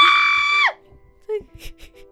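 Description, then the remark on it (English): A woman's loud, sustained high-pitched scream lasts under a second, then drops off in pitch and fades into a short echoing tail. Quieter voice sounds follow. “I think your scream echoed.”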